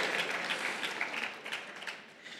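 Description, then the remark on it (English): A crowd claps steadily in a dense, even patter of many hands, moderately loud and sustained throughout without any voices over it. “So, no, don't clap for me.”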